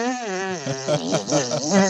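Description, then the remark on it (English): A steady buzz of lips blown like a brass mouthpiece, wavering up and down in pitch for about two seconds with a few quick pulses, imitating a trombone. “But I can still buzz my lips.”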